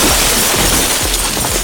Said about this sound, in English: Beninja hears some crashing above them. then judiciously steps back into the storage room, just in time. From above, Titan crashes down on the entire teal-painted ceiling.